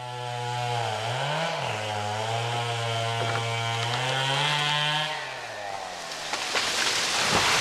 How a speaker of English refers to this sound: I saw the fences and I heard the chainsaws, and I saw the same sight you did on the Wednesday.